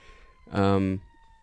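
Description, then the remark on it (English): A short, loud siren blast from an emergency vehicle outside, responding to a fire in the neighborhood, a steady low blaring tone lasting about half a second against a faint background. “We got the air raid signal sirens going off, so.”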